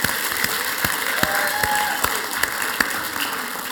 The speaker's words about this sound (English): Why don't we give them a round of applause and just thank them this morning.